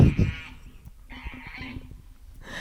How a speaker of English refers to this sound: We were distracted there because the goose was the boy goose was honking.